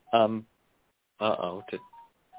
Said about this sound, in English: No, I'm here. Oh, okay, good. Because I heard my phone beeping.